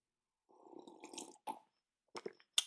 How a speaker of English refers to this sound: Right off the bat, before I start laying out those aforementioned points that I promise I have, I'm gonna take a sip of coffee because I can feel my mind kind of lagging. Give me one second, guys.